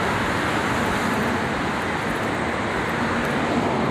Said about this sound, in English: Shit. Traffic.